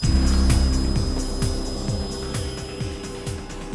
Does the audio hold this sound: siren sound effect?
no